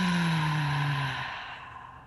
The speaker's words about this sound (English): Now take a deep breath in. Contract your pelvic floor muscles. Hold the breath. Hold the contraction. Hold. Drop your chin a little. Take a sniff of air. And now exhale it out.